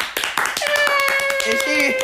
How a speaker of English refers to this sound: She's here. She's arrived, y'all. Clap it up for her.